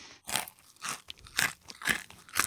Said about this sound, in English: Is that what you're crunching on? You're crunching on a pig flappy? I'm embracing my inner Hannibal Lecter and eating some fava beans.